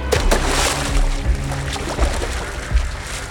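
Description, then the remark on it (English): Continuous sloshing and churning water, with a few heavier low thumps of splashing as someone dives into and moves through a river. Loud, and without any voices. “Heracles nodded, then dove into the river.”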